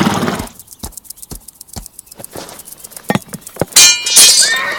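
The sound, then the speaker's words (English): A series of sharp hoof-like clops and knocks, then a loud, high horse whinny bursts out near the end, shrill and wavering. “I'll pick some flowers for his horse to sniff.”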